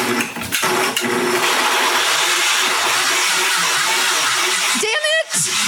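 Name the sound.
kitchen blender running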